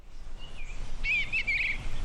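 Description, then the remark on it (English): Birds chirp outdoors in a few bright, warbling bursts over a low rumble of wind and background noise, with a breeze blowing and chickens clucking, at the Davies Shelter Farm, an urban farm behind a fence at the William S. Davies Homeless Shelter in Rome. “Birds are chirping, a breeze is blowing, and chickens are clucking”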